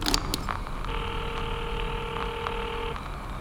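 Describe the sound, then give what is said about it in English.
A few quick clicks, then a steady electronic phone tone holds for about two seconds, like a line ringing after dialing. No voices. “This phone started ringing.”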